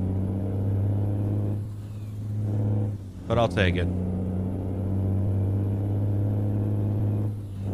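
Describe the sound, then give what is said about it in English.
A heavy truck engine in a driving video game drones steadily and loudly throughout, its deep hum holding under the driving, while a man speaks briefly over it partway through. “Oh yeah, we're getting this goddamn truck fast. I guess this engine is definitely not too slow.”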